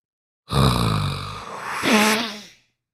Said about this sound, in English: Who's breathing really loudly?